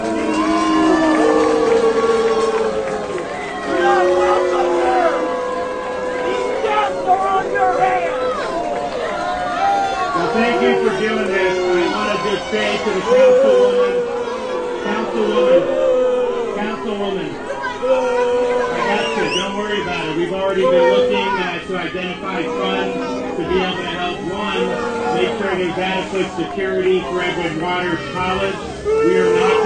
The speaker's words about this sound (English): Governor Ron DeSantis was booed when trying to speak at a vigil for the victims